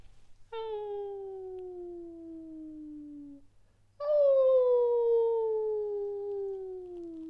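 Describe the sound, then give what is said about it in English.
A person imitates a wolf with two long, sustained howls, each sliding slowly downward in pitch; the second is louder and follows a brief pause. Close and clear, with no talking. “Sometimes I like to howl. Howl.”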